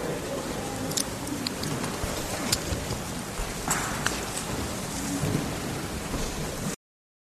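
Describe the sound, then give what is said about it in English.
Steady rain falling in a dense, continuous hiss and patter, with scattered louder drops and a faint low rumble beneath; no voices, and the sound cuts off abruptly. “Thanks for coming out in the rain.”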